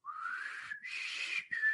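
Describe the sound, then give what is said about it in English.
A clear, high-pitched whistle in three connected parts, low, then higher, then low again, sounding close and steady with no talking, like someone whistling a short call. “It's also said that Chris Tucker emit a high-pitched three-part whistle in a pattern of low, high, low.”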